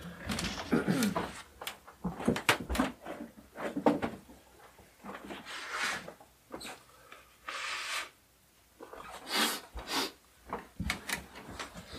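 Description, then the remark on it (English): Someone blows their nose, a few short, breathy honking bursts mixed in among rustling and handling noises, with no talking. “Hold on, I have to blow my nose.”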